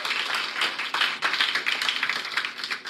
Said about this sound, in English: Yeah, you should clap for that, guys.